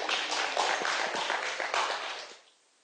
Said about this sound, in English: Yeah, you can go ahead and clap.